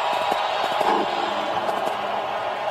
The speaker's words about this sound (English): Those are cheers from the crowd. And New Orleans, by the way, still cheering. Now they're walking on the field. Listen, the cheers pick up here as he walks onto the field. There we go. I'm not adjusting the volume. That's just the crowd.